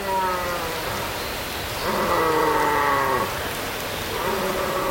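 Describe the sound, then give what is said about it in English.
Stags bellow with drawn-out, mournful calls, several overlapping and rising and falling, in the distance at the edge of a forest in Glen Affric, Scotland, in early October, while hard rain hisses steadily throughout. “In the distance, listen for the mournful croon of stags.”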